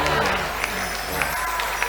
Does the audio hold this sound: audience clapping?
yes